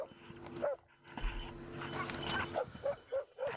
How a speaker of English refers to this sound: There's a dog's got involved now. A couple of dogs. This billy goat is having absolutely none of it.